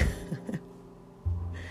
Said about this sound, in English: A huge motorbike has gone by on the ring road near where I live. And even though all of the windows are closed, the vibration of that sound is over and above what my double glazing can do.